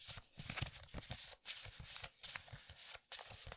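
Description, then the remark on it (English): A stack of index cards with questions on them being shuffled, a steady run of quick papery riffles and flutters broken by a few brief pauses, with no one speaking. “We have a plethora of questions, and I ran out of index cards because that's how many questions we got. So I'm going to go ahead and shuffle these.”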